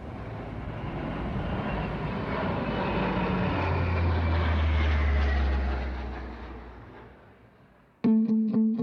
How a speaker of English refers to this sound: So you can imagine at 1 or 2 o'clock in the morning, this thing flying over your house at that speed with two engines, and they got four bladed propellers on them.